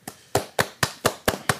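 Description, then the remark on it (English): A quick, steady run of about seven sharp hand claps, crisp, each one snapping out with a short ringing tail and no voices underneath. “I told you about the clap.”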